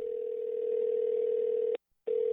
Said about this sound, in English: Can you call them back? Let's see if we can ring them up again. Come on. Come on. Oh, that's a good sign. The phone is ringing.